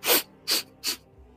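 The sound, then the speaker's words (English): A voice imitates a creature sniffing as it pans its head one way, then the other: three quick, breathy sniffs in a steady rhythm, moderately loud, with no speech around them. “It kind of pans its head one way, pans the other, and you hear it sniff.”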